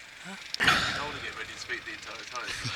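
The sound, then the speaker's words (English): A single booming soundboard bomb explosion effect bursts out suddenly and rumbles away over a second or two, with people talking quietly underneath and continuing after it fades. “He's got like input ready. he's ready to go. To drop bombs, but he keeps on forgetting.”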